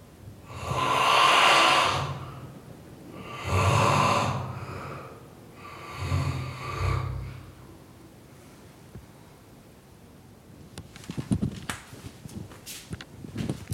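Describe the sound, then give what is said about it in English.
A man snoring behind a closed door: three loud, rasping snores rise and fall at a slow, steady pace, muffled through the door, followed by faint scattered clicks and rustling. “Oh God, he's still snoring. It's unbelievable. Listen to this.”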